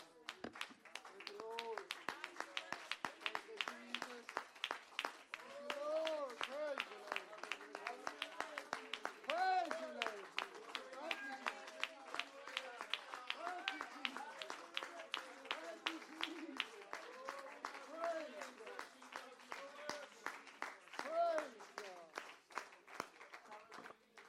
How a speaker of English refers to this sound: Stand together and give Jesus a big hand clap of praise this morning.